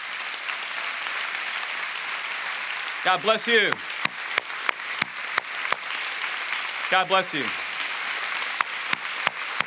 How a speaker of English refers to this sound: And by the way, we have a World War II vet sitting in the back who was at Iwo Jima. And I'm gonna ask you, sir, just stand up so we can thank you and applaud you for your service to your country.